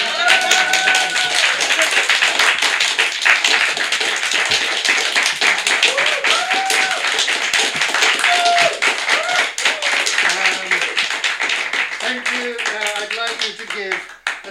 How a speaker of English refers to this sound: Less fulsome applause for the supporting act that helped me with my singular performance this evening